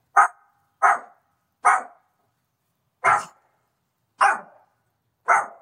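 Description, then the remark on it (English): A small dog on a leash, in a queue, barks six times, sharp. Three quick barks come first, then a short pause and three more, more widely spaced, with no one talking. “And the dog was starting to run in circles, so that Achala was getting pretty tangled in the leash.”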